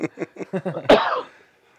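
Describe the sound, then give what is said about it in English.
A rapid run of about six short coughs builds into one harsher, louder cough that trails off, with no talking around it. “Damn, that cough.”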